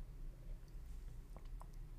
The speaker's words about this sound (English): Let me take a sip of my water, please.